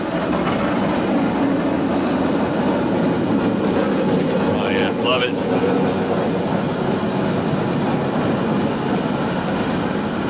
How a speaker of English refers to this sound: Here's a good cable car sound. Yeah, let's get it.